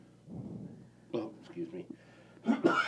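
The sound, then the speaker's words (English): Two or three abrupt coughs burst out over a murmur of low vocal sound, the last one the loudest and harshest. “I'm sorry, I'm coughing on air.”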